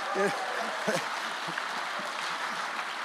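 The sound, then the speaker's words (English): Steady applause from an audience giving a hand for the women, a dense, even patter of many hands clapping for about three seconds, with a few voices calling out over it near the start. “That hand clap sounded very feminine.”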